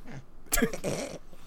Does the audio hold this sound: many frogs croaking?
no